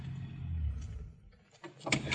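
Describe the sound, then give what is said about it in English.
A car engine rumbles low and steady as the car pulls over at a turnoff to park, then cuts off, followed by a brief quiet and a couple of sharp mechanical clunks like a door or handbrake. “Yeah, let's park it here a second.”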